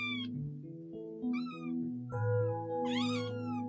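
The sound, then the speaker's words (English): A kitten meows several times in quick succession, high-pitched and fairly loud, each cry rising and falling with no talking around it. “Kittens meow to say hello or to ask for something, and they purr when they are happy.”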